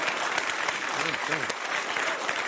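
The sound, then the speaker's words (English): Steady audience applause after a comedian's joke fills the whole stretch, a dense wash of clapping at an even, fairly loud level, with a few cheers and voices rising briefly through it. “They're way ahead of me. That's a good crowd.”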